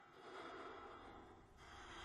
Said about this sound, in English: Somebody's breathing.